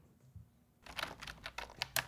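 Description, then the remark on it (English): Brisk typewriter keystrokes clack in an uneven flurry after a brief quiet moment, roughly eight or nine sharp strikes with no voices. “Let's all get out our typewriters and type about him.”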